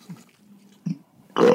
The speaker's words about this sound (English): He's burping as he's eating his third roast beef and mayonnaise sandwich.